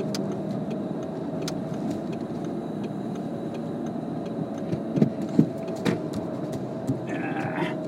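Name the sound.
car engine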